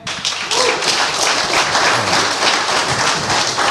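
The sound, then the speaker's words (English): A crowd applauds steadily, many hands clapping in a dense, loud wash that holds for several seconds without voices. “Clap it up for that, and rest in peace to Mayor Marion Barry.”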